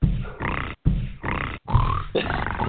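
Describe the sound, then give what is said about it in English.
Alex Jones makes three loud, guttural snorting grunts in quick succession, imitating a pig, each burst harsh and nasal with brief gaps of silence between them. “He starts snorting like a pig, dude.”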